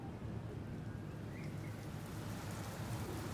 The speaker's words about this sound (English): Heavy rain is beginning to fall.